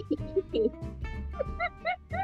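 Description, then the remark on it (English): A dog gives a few short, sharp barks in quick succession, rising over a steady background of other sound. “Oh, my dog said today, not today.”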